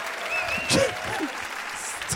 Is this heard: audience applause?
yes